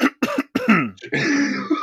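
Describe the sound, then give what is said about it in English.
A loud throat clearing: three short gruff bursts followed by a longer rasping, hacking rattle, all from one person with no talking. “Honestly, I'm just clearing my throat, no slash shit.”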